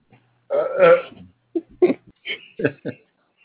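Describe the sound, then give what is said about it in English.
A long, loud belch from about 0.5 to 1.2 seconds, followed by several shorter, quieter burps and grunts in quick succession, as several people burp one after another to say goodbye. “Everybody needs to burp to say goodbye.”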